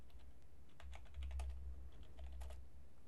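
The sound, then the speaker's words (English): Quick, uneven bursts of computer keyboard typing, fairly soft, as someone types an online search for a Jägermeister and orange juice drink recipe, with a steady low hum underneath and no voices. “I'm typing a whole bunch of extra words with it.”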